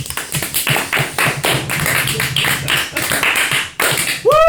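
Steady applause from a small group: dense, crackling claps keep up a busy, loud patter, then a rising whistle-like tone cuts in right at the end. No talking.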